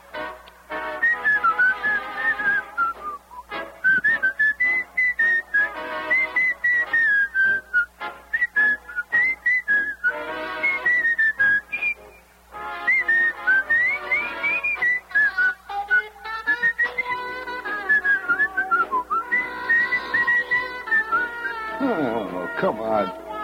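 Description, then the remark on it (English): A melody is whistled for over twenty seconds, with wavering, sliding pitches and brief pauses between phrases, fairly loud throughout and no talking over it. “And he used to whistle with it. Try whistling this.”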